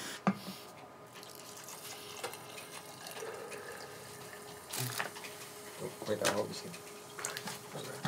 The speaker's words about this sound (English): So what you're going to do is next you're going to pour in your vinegar, but you're not going to pour it full. Just pour it to halfway to start.